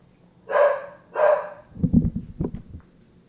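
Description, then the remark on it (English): A female pet dog barks twice in quick succession, loud, followed by a burst of lower, rougher growling or muffled barks, with no talking over it. “Do you have a dog?”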